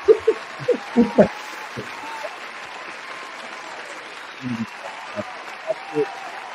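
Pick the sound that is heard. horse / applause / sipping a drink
applause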